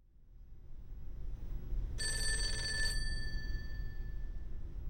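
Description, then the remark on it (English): A single telephone bell rings in one short, bright burst of about a second, a phone call from actor Peter Lawford to Marilyn on the evening of Saturday, August 4th, 1962, its metallic tone lingering faintly afterward over a steady low background rumble. No one speaks. “Well, as you said, it was a phone call, and the person on the other end of the line was Peter Lawford.”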